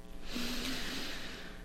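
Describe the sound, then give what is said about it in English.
A single long, heavy breath with a breathy, airy rush that holds steady for about a second and a half, no talking. “I'm breathing heavily yeah.”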